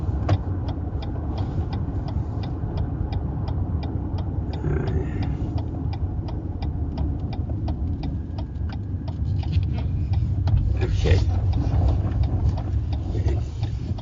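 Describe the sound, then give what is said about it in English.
Steady low rumble of a car driving east on the Whitehorse Pike, heard from inside the cabin, with a regular ticking like a turn signal clicking throughout and a few faint bumps and rattles. “Okay, so we're back in the car, and you're going to take me back in the direction that we just came to”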